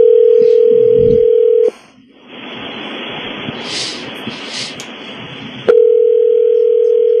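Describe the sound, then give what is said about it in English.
A steady telephone dial tone hums as a phone is dialed, cuts out briefly into a rushing, noisy line with faint high blips, then the same dial tone returns loud and constant. “Okay, so I'm going to dial the phone right now.”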